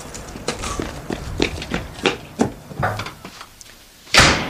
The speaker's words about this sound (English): what have I told you about slamming the door?